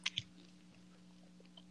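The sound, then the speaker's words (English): Two quick, crisp chewing crunches at the start, from someone eating something or chewing gum, followed by quiet with a steady low electrical hum underneath. No one speaks. “You're eating something or chewing gum or something.”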